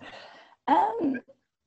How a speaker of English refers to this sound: Sorry, had to clear my throat there.